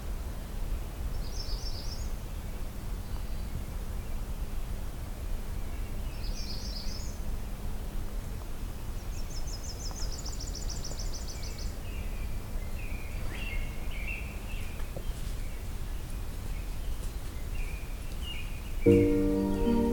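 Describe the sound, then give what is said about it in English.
Faint yellow-billed cuckoo calls come in scattered bursts over a steady outdoor hush at a very quiet location, with one brief rattling series midway and a few softer notes later. No one speaks. “Got a yellow-billed cuckoo. Very quiet, but this location is very quiet.”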